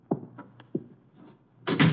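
The door of Room 304 at the Paul Hotel opens: a couple of soft knocks or latch clicks, then a brief rushing sweep as the door swings open. No one speaks.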